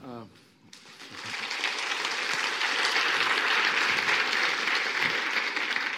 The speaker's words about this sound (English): Yes, hopefully you give both sides the right amount of applause, because I'm very sensitive to what happens here.